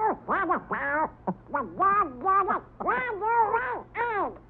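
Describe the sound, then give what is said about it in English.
Donald Duck's cartoon voice quacks and squawks in a rapid, garbled burst of nasal sputtering, loud, rising and falling in excited bursts for several seconds. “I'll bet, Donald, you're glad you're just a duck and not an animator.”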